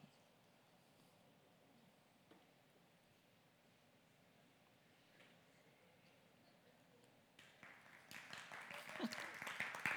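People begin clapping after several seconds of quiet murmuring, the applause swelling quickly and growing louder and denser toward the end.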